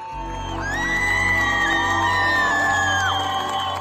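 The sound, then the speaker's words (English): A large crowd in the middle of a street cheers loudly outdoors, a dense wash of whoops and high-pitched yells swelling together and holding steady for several seconds, cheering on a young woman who dances as she throws her headscarf onto a bonfire. “In this clip, a young woman dances as she throws her headscarf onto a bonfire in the middle of the street, and a large crowd cheers her on.”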